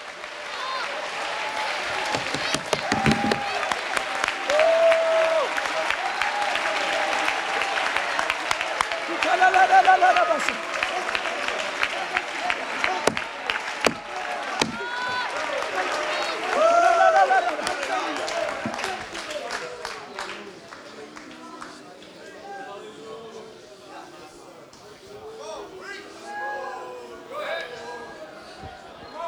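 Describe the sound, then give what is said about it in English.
An audience claps during a church sermon, thanking God for spouses and children, in a dense, sustained wash of applause. Raised voices and shouts are mixed in, and the clapping gradually thins out toward the end. “Come on, as you're clapping, you ought to say, God, I thank you for my wife.”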